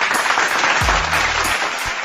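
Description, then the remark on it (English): Steady audience applause fills the whole stretch, a dense wash of many hands clapping at a fairly loud, even level, with a brief low hum rising partway through. “One more round of applause for my dope dealer.”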